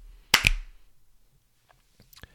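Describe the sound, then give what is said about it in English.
A single sharp hand clap rings out loud and crisp, with a quick doubled attack, then fades into quiet broken only by a few faint clicks. “Three, two, one. Clap.”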